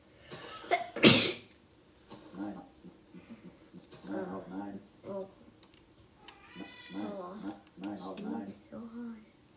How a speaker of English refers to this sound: Does this ever happen to you? It's never happened to me. Do you sneeze so hard that you're crying?